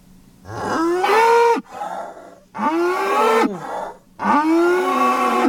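A cow moos three times in a row, each call long and loud, with rising and falling harmonic tones and short pauses between. No one speaks.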